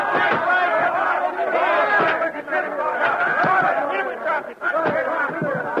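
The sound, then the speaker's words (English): A rowdy crowd shouting all at once as a fight breaks out, many overlapping male voices yelling and jeering in a loud, continuous roar, like a bar brawl, with a brief dip midway before surging again. “Hey, fight!”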